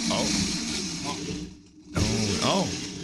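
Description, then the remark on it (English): A blender making a banana drink with bananas and banana liqueur grinds and whirs loudly, dips out for a moment as if stalling, then roars back with a strained, wavering pitch. “We may need to go to PC Richard and get a new blender.”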